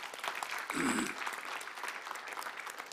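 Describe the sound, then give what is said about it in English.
A church audience claps for the Lord, a dense wash of overlapping hand claps at an even level, with a brief voice or shout rising over it near the start. “Yeah, give the Lord a clap.”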